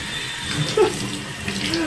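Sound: water running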